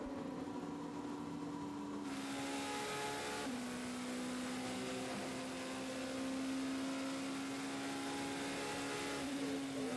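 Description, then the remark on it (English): A loud racing car engine, the number 36 car heading through a chicane during a qualifying session, drones steadily, its pitch stepping down twice early on as if shifting gears, then holding a strong, even roar with no one speaking. “the 36 car is heading through the Paul chicane with Thomas Laurent once again at the wheel”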